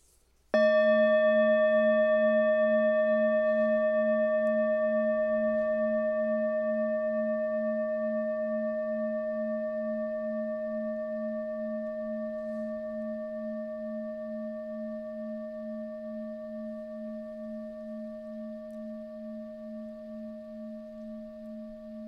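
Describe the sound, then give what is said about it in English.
A bell is struck once during a mindfulness exercise and left to ring, its clear, steady tone with bright overtones slowly fading and gently wavering over about twenty seconds. No one speaks. “Here is a bell.”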